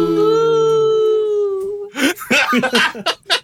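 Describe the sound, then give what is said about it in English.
A group of voices holds a long, steady howl together, imitating werewolves, for almost two seconds, then breaks into loud, bursting laughter and cheering. “We will all howl for you, okay?”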